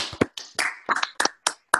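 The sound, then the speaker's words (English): A handful of scattered handclaps from a group applauding over a Zoom video call, roughly eight sharp separate claps in under two seconds, sounding thin and choppy rather than like full applause, with no voices. “And finally, just on this little test, can everybody applaud, please, after three?”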